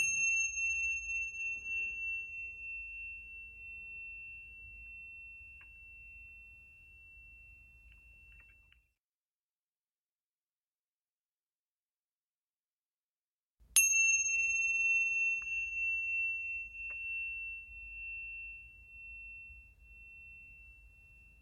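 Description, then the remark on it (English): Meditation chimes struck twice, roughly fourteen seconds apart, each strike a bright, clear tone that rings on and fades slowly, with a stretch of silence between them and no talking. “So let's take a few moments to meditate on that. Amy will sound the chimes.”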